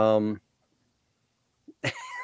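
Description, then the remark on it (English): A small pet dog gives a couple of short, high yaps separated by a brief silence, clear, with no one talking over them. “there's my little dog man, Sophie, back there”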